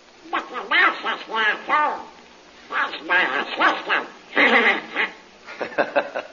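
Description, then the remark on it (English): A raspy, quacking cartoon duck voice, Donald Duck, chatters loudly in several rapid bursts with short pauses, saying he likes Jungle Jim; a person imitating a duck's garbled speech. “That's Donald Duck telling you he likes Jungle Jim, too.”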